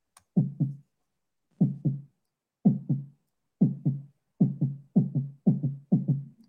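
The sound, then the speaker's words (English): A heartbeat sound effect: deep, muffled lub-dub thumps in pairs, loud, repeating alone and quickening steadily until the beats nearly run together. “All I can hear is my heartbeat.”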